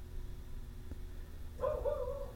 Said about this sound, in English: Fucking Rocky's barking. He knows. He's pissed. The fucking demons are outside.